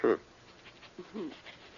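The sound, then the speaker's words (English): Heavy, labored breathing from asthma: a loud gasping breath at the start, then quieter rasping, wheezy inhales and exhales that sound strained, almost like panting. “Oh, you mean my heavy breathing. Asthma.”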